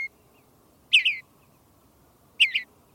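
Two short, warbling bluebird phrases, each a soft burbled double note, separated by a pause over faint background hiss. The songbird sounds mellow in tone.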